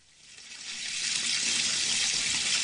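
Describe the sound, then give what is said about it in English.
Water runs steadily from a tap into a bath, a broad hissing gush that swells in the first second and then holds at a constant, fairly loud level with no voices. “Get into that water and have a good soak.”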